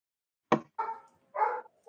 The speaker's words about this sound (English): Can you hear dogs barking? Yes, but it's not mad. It's not like it's coming over you, and it's okay.